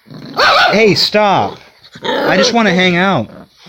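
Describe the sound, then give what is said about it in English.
A dog barks and growls in two loud, drawn-out bursts of yapping, with a short pause between them. “She's wonderful, but every time I do one of these, they start barking, which they never do.”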